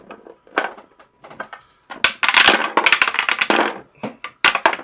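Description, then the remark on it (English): Dice clatter down through a dice tower: scattered sharp clicks, then a dense burst of rattling knocks, then a few final taps. Fairly loud, with no voices. “It is a dice tower.”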